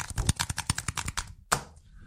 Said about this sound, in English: That was my tapping because it's time to look at some emails.